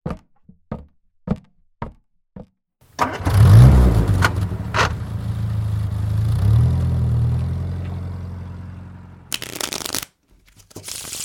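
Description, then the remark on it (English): A few sharp knocks and clicks, then a car engine turns over and roars to life, idling and revving steadily before a burst of noise cuts it off; a car starting and driving off. “Thought you might like a lift.”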